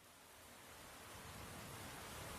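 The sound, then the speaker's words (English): Steady heavy rain patters against a window in a continuous dense hiss, swelling slightly in loudness over a few seconds, with no voices or other sounds. “We open up on black with the sound of heavy rain pattering against a window.”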